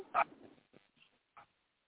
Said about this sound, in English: Yeah. Unfortunately, but the dogs don't start barking. Soon as somebody coming to the house.